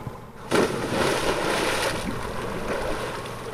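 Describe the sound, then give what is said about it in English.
A sudden splash as a diver plunges off a boat into the sea off Newfoundland to fish for garbage, followed by a steady rush of water and wind around the boat. Fairly loud, with no talking. “That splash is Shawn Bath diving off a boat just off of Newfoundland”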